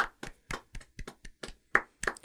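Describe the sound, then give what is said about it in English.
Applause for Jessica Lange's first movie, King Kong, in a sparse, uneven rhythm: about a dozen sharp, bright claps over two seconds, sounding like only a few pairs of hands rather than a full crowd. Nobody speaks. “Can we get a round of applause for Jessica Lange's first film movie?”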